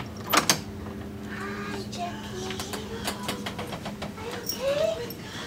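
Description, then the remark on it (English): A door swings open with a long, drawn-out creak that wavers in pitch, preceded by a couple of sharp latch clicks, over a quiet background. “And she chooses the door on the left.”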